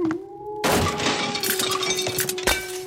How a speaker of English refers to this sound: you destroyed the kitchen by walking right into the dishes. But at least you didn't break my lucky tea kettle.